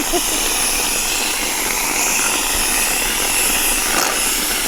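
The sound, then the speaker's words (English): A whipped cream can sprays onto a funnel cake at a Renaissance festival in one long, steady, loud hiss that runs unbroken for several seconds, with a faint low rumble underneath and no voices. “The reason I said Renfest is because the audio I took was someone spraying it on top of a funnel cake.”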